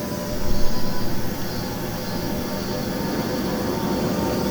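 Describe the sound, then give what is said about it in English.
A steady, unbroken wash of high buzzing cicadas in the trees on a sunny day after rain, droning evenly for the whole stretch over a low rumbling background, with no talking. “Oh, you can hear the cicadas in the trees, listen.”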